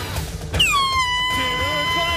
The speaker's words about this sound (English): What? I couldn't hear you. I'm sorry. You brought the air horn.